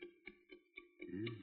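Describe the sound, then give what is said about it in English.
Faint, muffled ticking of a watch inside a package, heard through a stethoscope: a few soft regular ticks about four per second, followed by a brief low rumble of handling noise. “Ticks, all right.”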